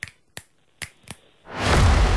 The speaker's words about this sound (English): Wow. This is some top-notch clicking, guys. Great. This is professional A-grade stuff.